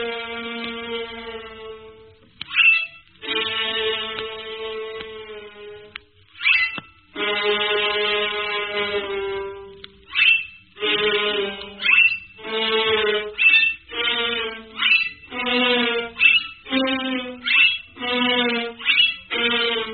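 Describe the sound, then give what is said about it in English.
A short piece of music mimicking a donkey's bray: long, bright held tones that sag downward, then a run of quick, choppy alternating notes like hee-haws, with no voices. “You will now hear a little musical composition that portrays to you the donkey.”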